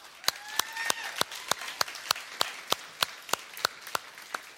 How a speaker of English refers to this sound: I can't see you, so I'll give a clap.